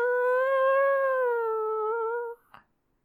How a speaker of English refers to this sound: We've really got to get that door fixed. It's so squeaky.